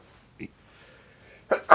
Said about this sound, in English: Bless you. We're going to leave that in. That was a good vampire sneeze right into the elbow. That's how to do it, right? Nicely done.